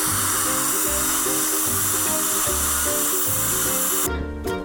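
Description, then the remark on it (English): A dental drill runs steadily during a dental procedure at Enamored Dentistry in North Scottsdale, with a loud, hissing water spray throughout, the high whoosh cutting off abruptly near the end while a lower mechanical hum continues. No one speaks. “I wanted to clear the air and get that all straightened out before you put drills and sharp objects in my mouth.”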